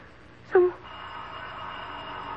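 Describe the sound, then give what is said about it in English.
A single short doorbell chime rings out clearly, a bright tonal ding lasting about a quarter second, followed by a steady low background hum with no voices. “Oh, who could be ringing the bell at this hour?”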